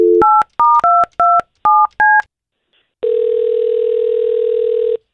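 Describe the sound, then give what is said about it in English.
A rapid string of about seven touch-tone beeps as a woman's phone number is dialed, each a short dual-pitched tone, followed after a brief pause by a steady, buzzing ring tone lasting around two seconds. “We're going to try to call her and see if we can find out what happened.”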